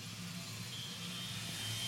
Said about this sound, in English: Ed is languishing in bumper-to-bumper traffic.